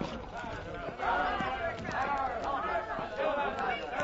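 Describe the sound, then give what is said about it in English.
A loud mob of many overlapping voices shouts and jeers together, taunting and pursuing a woman, in a continuous, rowdy clamor, with scattered thumps and footfalls mixed into the din. “What is that mob? Why do they taunt the woman?”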